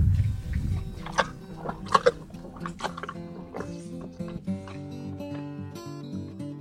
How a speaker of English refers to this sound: After the donkeys slurp up their dinner, they wander off into the eucalyptus trees on the other side of their huge pen.